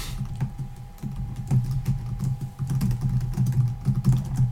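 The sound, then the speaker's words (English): Rapid, irregular clicking of keys on a computer keyboard, a steady stream of light taps over a low continuous hum and a faint steady tone, with no voices. “No, are you tweeting during this?”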